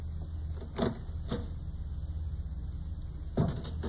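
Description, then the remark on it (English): A door eases open just slightly, with a few soft clicks and rattles of the latch spread over several seconds against a steady low background hum; no one speaks. “Just open that door a crack.”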